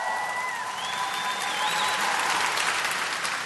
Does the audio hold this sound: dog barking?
no